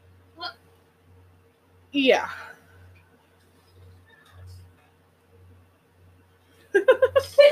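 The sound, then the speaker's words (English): One sharp sneeze bursts out after a brief earlier sound, followed by a quiet stretch with a faint pulsing low hum, then someone starts talking at the end. “Bless you.”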